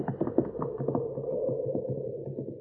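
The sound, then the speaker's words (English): Horses' hooves clip-clop in a quick, uneven rhythm over a low rumbling background, the muffled hoofbeats continuing steadily with no voices as the horses are taken away. “Oh, the horses. He'll be after the horses.”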